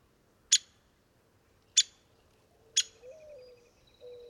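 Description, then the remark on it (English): Three sharp, high 'peek' calls of a ladder-backed woodpecker, evenly spaced about a second apart, crisp, with faint softer whistled bird notes in the background afterward. “We home in on a ladder-backed woodpecker making sharp peak calls.”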